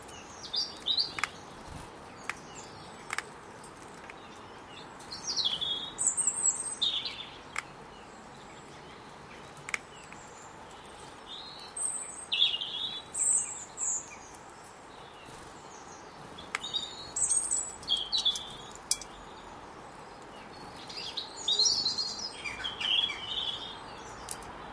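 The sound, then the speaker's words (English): Jackdaws calling as they fly over a garden outdoors, with short sharp calls coming in scattered bursts, plus occasional faint clicks against a steady background hush. No one speaks. “I don't know what you do about these birds that fly over the garden. These jackdaws.”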